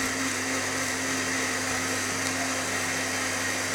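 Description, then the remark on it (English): A kitchen blender whirs steadily at high speed blending blanched almonds, a loud, continuous motor drone with a bright, buzzy tone that holds unchanged throughout, with no talking. “It really pays sometime to have a nice, strong blender, let me tell you.”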